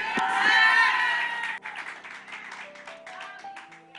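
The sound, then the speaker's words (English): An audience claps and cheers loudly to give the Lord praise, a dense wash of applause with shouts and whoops that fades after a couple of seconds into scattered clapping and murmured voices. “In Jesus' name, all God's people said, come on and clap your hands and give the Lord some praise.”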